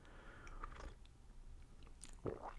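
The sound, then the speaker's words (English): Quiet mouth sounds of someone sipping hot vanilla coffee from an electric Ember mug: a soft slurp early on, then a wetter gulp and swallow near the end, with no talking. “I'm taking a sip of hot coffee with vanilla.”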